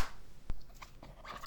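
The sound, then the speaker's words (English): One sharp hand clap cracks out right after a "3, 2, 1" countdown, a single crisp burst that stands alone amid faint low rustling and small clicks, with no voices heard. “I was going to do a joke before the clap, but then I felt it was sacred.”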